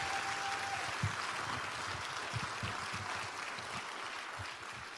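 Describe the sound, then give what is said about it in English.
An audience applauds their pastor during Pastor Appreciation at a morning church service, in a steady, dense wash of clapping that holds at an even loudness for the whole stretch, with no voices rising above it. “So when we're in this mode of Pastor Appreciation, before we do anything else this morning, can you just give our pastor a great big round of applause and let him know how much you appreciate him?”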